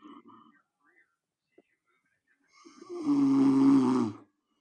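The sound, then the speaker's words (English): A dog named Meltdog gives one loud, raspy snore lasting over a second, with a rattling, buzzing drone, after a few faint, quiet sounds and a brief pause. “Oh, such a healthy snore, Meltdog.”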